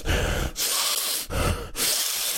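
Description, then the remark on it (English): A voice imitates heavy, exaggerated breathing: four loud, rasping breaths alternating in and out, each lasting about half a second with brief pauses between. “But the problem is, dude, every now and then, no matter where you go, you have that guy that sits there, just breathing heavy like he's giving birth.”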